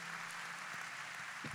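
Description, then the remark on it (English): A church audience claps together as a clap offering unto the Lord, a dense, steady wash of applause that holds evenly throughout, soft, with no voices rising above it. “Oh, with a clap offering unto the Lord.”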